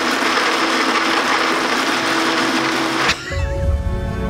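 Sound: kitchen blender running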